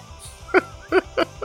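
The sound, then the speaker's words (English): A goat bleats three times in quick, short bursts, moderately loud, with brief pauses between each call and a low background rumble underneath, as someone urges it to come along. “Come on. Come on, goat.”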